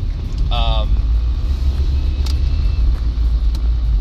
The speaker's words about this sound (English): damn truck